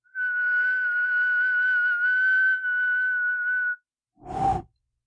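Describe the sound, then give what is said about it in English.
A man unsuccessfully attempts to whistle like a jet engine: a long, steady, thin whistled tone held for several seconds, followed after a pause by a short, breathy whoosh of air. No talking. “he can't whistle at all, let alone in the manner of a jet engine.”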